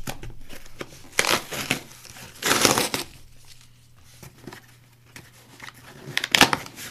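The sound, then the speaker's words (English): Rustling and tearing as a cardboard box, a Christmas present, is opened and crumpled, in a few irregular crinkly bursts with quieter handling noises between them. “This is a box of some sort.”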